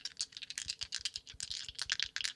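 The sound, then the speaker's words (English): Dice rattle and clack together as they're shaken and rolled, a rapid, uneven run of sharp clicks lasting a couple of seconds, with no one speaking. “Just in there fucking shaking dice”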